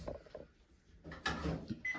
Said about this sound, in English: Hold on a sec, let me turn off my timer.